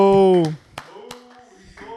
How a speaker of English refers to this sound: Hey, everybody clap in the back. Clap in the back. Let's go.